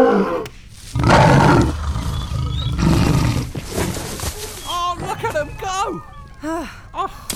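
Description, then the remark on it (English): A lion lets out a loud, rough roar lasting a couple of seconds, then a run of short, high, wavering squeals follows. “Bring forth from this egg a mighty lion.”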